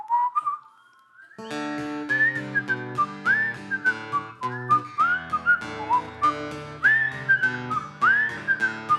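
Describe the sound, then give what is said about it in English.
A bright whistled melody of an American whistling song carries a jaunty tune over a bouncy instrumental backing with steady rhythmic chords, the whistling rising and sliding between notes, loud. “One of the greatest whistling songs in all of American history.”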